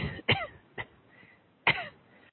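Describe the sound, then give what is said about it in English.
A few short, dry coughs: two sharp, louder bursts with a softer one between them, spaced irregularly over a couple of seconds, with no talking. “I have an interesting little cough here that wasn't there an hour ago.”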